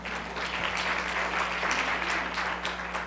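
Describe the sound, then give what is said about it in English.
An audience gives itself a round of applause, a dense wash of many hands clapping at an even loudness for a few seconds, with no voices breaking through. “I think you ought to give each other a round of applause.”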